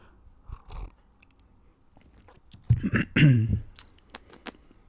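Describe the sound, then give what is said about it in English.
A wet slurp of someone sipping hot coffee from a cup, followed by a few soft mouth clicks and smacks. “Let me get a little sip right here.”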